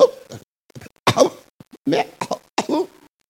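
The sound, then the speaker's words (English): A voice imitates a sick, coughing goat brought for sacrifice, with a series of rough, harsh coughs in irregular bursts, some breaking into bleating tones, fairly loud with short pauses between. “The goat they are bringing to come and sacrifice, the goat is coughing.”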